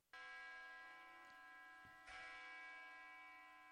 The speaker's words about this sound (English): That was an ominous church bell because things are ominous and you get two of them.